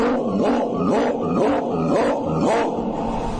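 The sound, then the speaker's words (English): A dog, Toby, snarls and growls ferociously in steady, rapid bursts about twice a second, loud, with rough barking edges and no talking over it, as it furiously attacks Punch. “Toby attacked Punch furiously.”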